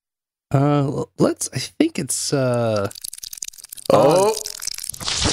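Loud goat bleating: three long, quavering bleats with a wavering pitch, separated by shorter choppy bursts, with no other sounds around them.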